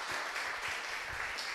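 A crowd applauds steadily, the dense clatter of many hands clapping at once, sustained and fairly loud throughout with no voices rising above it.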